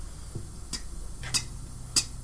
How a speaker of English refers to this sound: But it's a group circle and you're just waiting. And they hear the clock ticking in the corner.